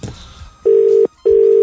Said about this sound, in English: your phone's ringing